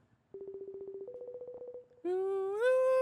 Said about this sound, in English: we're video calling you on the Insta. On the gram of Insta. That's a crazy ringtone. It's very European.